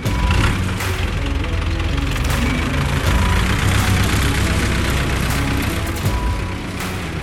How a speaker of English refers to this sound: All right, the sound of that tractor means it's time for us to go to work.